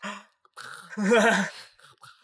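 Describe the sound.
A voice imitates the sleepy, dry gasping for water of a thirsty person asleep in bed, a few breathy rasps rising into a longer strained gulp of air in the middle, fairly loud, then trailing off.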